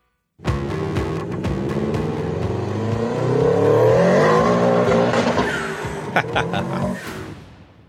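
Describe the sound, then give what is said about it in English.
A car engine revs loudly, rising in pitch through several throttle pulls with sharp bursts, then winds down near the end; no one speaks. “and submit your car sounds.”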